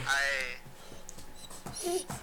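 animal, upset dog whimpering

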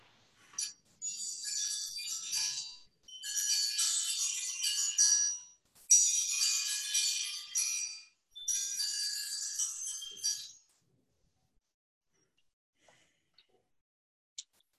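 signal or alarm, small bells ringing

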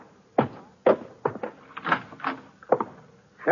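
household object, front door opening

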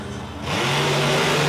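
vehicle, monster truck engine revving

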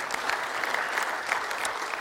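crowd, audience applause

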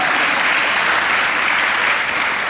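crowd, audience applause

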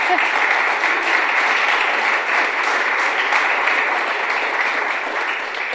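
crowd, audience applause

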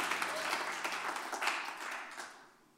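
crowd, audience applauding

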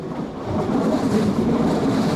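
vehicle, train running on rails

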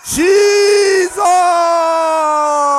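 crowd, audience shouting together

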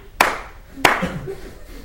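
human body sound, hand clap

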